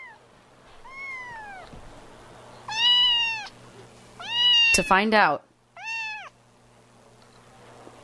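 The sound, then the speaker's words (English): A cat meows about five times in a row, clear and fairly loud, with short pauses between the cries, while a person briefly speaks underneath. “We're killing the cat noises.”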